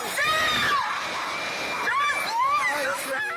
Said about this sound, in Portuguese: Aqui, 18 pessoas morreram em um deslizamento de terra. Os gritos daquele domingo são difíceis de esquecer.